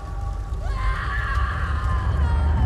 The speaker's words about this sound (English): Fire licks his cheek, pain lancing his jaw. He screams, long, high, and wet with sorrow and despair.